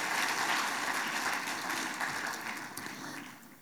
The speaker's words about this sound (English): Can we give them a huge round of applause as they come up to share?